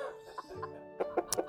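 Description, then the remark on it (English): A chicken sound-effect drop, used while discussing the film Chicken Run: a chicken clucks in a quick series of short, sharp calls, bunched toward the end, fairly clear with no talking over it. “They had a good, when they were talking about Chicken Run, they had a lot of good chicken drops.”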